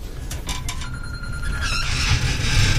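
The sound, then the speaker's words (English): A mobile phone rings with a steady electronic tone and quick chirping bursts, moderately loud over a low, rumbling background hum, with no voices. “The Southall man's left his phone.”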